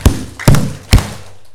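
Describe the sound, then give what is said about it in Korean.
An audience claps together three times in a steady, even rhythm, each clap a loud, dull smack about half a second apart, with no voices over them. “자, 박수 세 번.”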